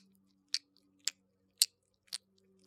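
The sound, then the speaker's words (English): Five wet, smacking mouth sounds imitating sex sounds for erotic ASMR audio, in a steady rhythm about half a second apart, each a short, sharp, bright squelch over a faint low hum, with no talking. “So wet sounds.”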